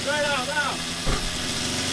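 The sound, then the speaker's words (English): A chainsaw engine runs steadily and loudly, its high whine wavering up and down in the first moments before settling into a constant buzzing drone, with a voice briefly over it. The chainsaw is taken outside and used to cut down a tree. “Don't, whatever you do, don't put the chainsaw in here.”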